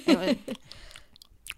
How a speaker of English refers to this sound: But they amped the sound on them eating this pizza.